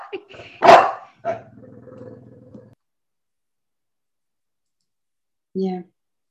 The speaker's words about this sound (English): I'm sorry, my dog wants to. He wants to jump.